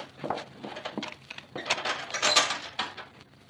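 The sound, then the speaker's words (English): A sheriff unlocks and swings open a metal jail cell door: a run of rattling mechanical clanks and clicks, building to a louder grinding scrape midway, then a few fading knocks. No one speaks. “Open the shell door, Sheriff.”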